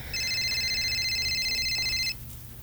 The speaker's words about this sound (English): Oh, shit. Wait, is that another one? No, it's just a regular phone call from my girlfriend.